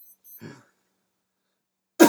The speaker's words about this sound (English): Sorry about that. I have a cough.